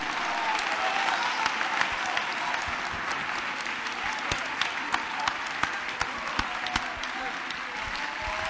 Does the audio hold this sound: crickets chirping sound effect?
no